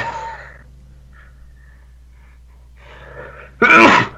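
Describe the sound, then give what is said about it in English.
A single sharp, loud sneeze bursts out near the end, preceded by a few quiet indrawn breaths over low background hum. “Bless you.”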